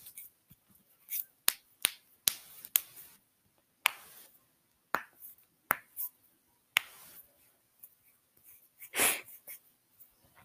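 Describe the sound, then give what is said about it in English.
Knuckles cracking in a quick, irregular series of sharp, dry pops, around a dozen in all, with a louder breathy sniff near the end and no talking. “I'm cracking my knuckles, can you hear?”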